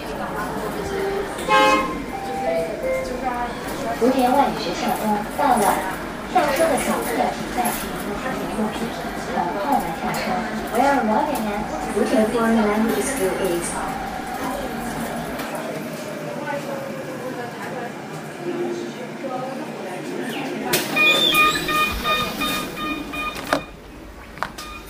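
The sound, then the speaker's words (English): Steady rattling and rumbling inside a moving number 21 city bus, continuous and fairly loud throughout, with muffled voices in the background and a brief tonal beep near the end. “So you can hear, like, all through that, you can hear, like, this rattling sound, and that's actually the bus.”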